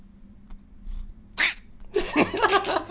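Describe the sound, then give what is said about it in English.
A cat being squeezed in a hug lets out a short, squeezed-sounding squeak followed by a longer, strained meowing yowl, fairly loud, with faint rustling and breathy noises around it. “Wait, this is what happens when you squeeze him.”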